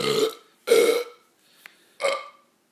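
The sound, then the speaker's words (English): Three loud burps in quick succession, strained and gulping as if someone is choking on them, with a tiny click in the pause before the last one. No talking. “He's choking. He's choking on a burp.”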